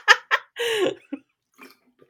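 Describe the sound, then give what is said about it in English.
Two quick wet slurps, then a longer drawn-in sip of water and a few faint swallowing clicks fading out. No one speaks. “Oh, you just took a sip of something, did you?”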